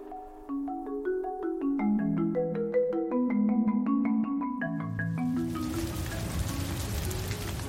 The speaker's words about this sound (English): Rain. Clearly you can hear it, you can see it, you can touch it, of course.